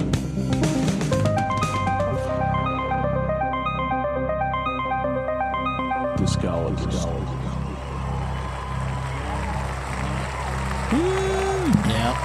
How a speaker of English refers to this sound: You know why they're cheering? You know why? …'s on the show. No, he's not on the show.